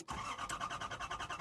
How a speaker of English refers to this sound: What just happened? I'm not sure. The Cat Noir mobile just sort of conked out.